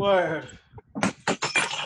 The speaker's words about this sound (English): What? Oh, he's dropping glasses. You breaking the glass?